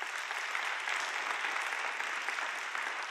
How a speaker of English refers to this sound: By show of applause, how many of you are inspired by older adults who have a vibrant faith? One more question. How many of you have said of some of them, when you grow up, you want to be like them? Show of applause.